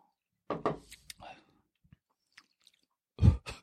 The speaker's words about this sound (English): Let's take a little sippy sip just so you have a feel.